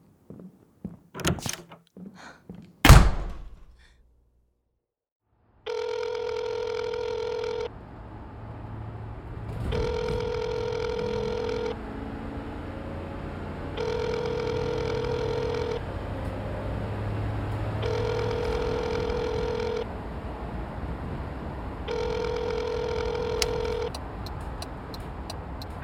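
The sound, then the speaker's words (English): A telephone rings five times in evenly spaced, bright electronic bursts over a low rumbling background before voicemail picks up, after a couple of sharp door-like thunks at the start. No one speaks. “I can't get the phone right now because I've probably gone fishing, and if I've gone fishing, then I've probably gone hunting.”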